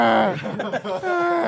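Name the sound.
voice imitating snoring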